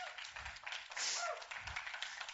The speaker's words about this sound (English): Give the Lord applause.